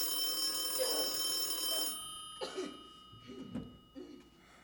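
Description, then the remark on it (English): An old-style telephone bell rings steadily for about two seconds, then cuts off. A few short coughs or throat-clearing sounds follow in the quiet. “The phone was frightening.”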